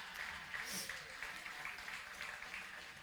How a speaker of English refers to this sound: All right, let's give them a clap. Let's bring them up.